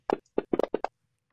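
Three dice rolled during a game: a quick burst of about six hard clattering knocks, fairly loud, tumbling in an uneven rhythm over less than a second before silence, like dice rolled across a table.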